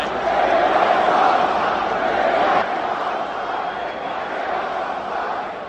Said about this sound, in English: The entire Boston crowd is yelling, "Draymond sucks," meaning Draymond Green plays for the Golden State Warriors.